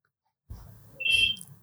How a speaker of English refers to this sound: What is that? We've got a ringing in the studio right now. Why have we got a ringing in the studio? I don't know.